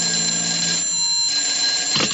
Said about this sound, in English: I was just putting on my hat and coat when the phone rang.